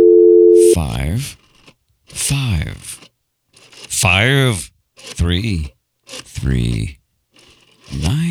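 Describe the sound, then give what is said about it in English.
A steady telephone dial tone hums for under a second while a phone call is being made from an abandoned first-floor office, then cuts off as a man talks in short animated bursts; no clear ringing follows. “It is ringing just as I have foreseen.”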